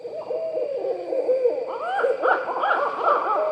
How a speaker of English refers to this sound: Cause some of this stuff is kind of creepy, but so this is the barn owl's laughing. Yeah, imagine you're in the woods at night and you hear this.